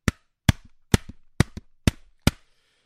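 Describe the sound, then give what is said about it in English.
A head knocks against a wall six times in a steady rhythm, each sharp, loud thud followed by a short low rebound. No one speaks. “Let me just knock my head against the wall here.”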